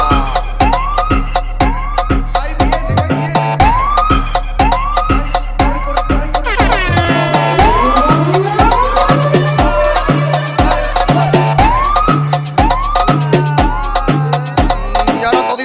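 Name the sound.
police car siren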